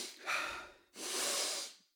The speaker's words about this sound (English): If you feel yourself yawning excessively, try deep breathing through your nose. Your body may need more oxygen.